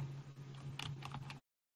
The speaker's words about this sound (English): Who's typing this time? Is not me.